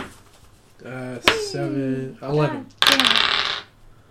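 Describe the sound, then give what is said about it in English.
A short clatter of dice tumbling across a tabletop, a sharp knock followed by a brief rattling roll, fairly loud, with a voice sounding just before. The dice are rolled for initiative in a tabletop game. “I'm gonna need you to roll initiative.”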